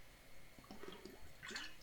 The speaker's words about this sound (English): Excuse me, just having a sip of water there.